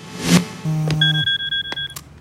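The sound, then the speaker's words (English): An electronic phone ringtone of rapid, evenly spaced high beeps, fairly loud, preceded by a brief low buzzing tone and a soft knock, as a character in a TV clip gets a call from the CEO of a supplement company. No one speaks. “gets a phone call from the CEO of the supplement company.”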